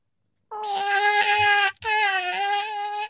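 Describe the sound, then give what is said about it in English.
A cat lets out a long, loud, drawn-out meow, broken by a brief pause into two sustained wailing parts, with no other sounds. “This is the most important meow for me.”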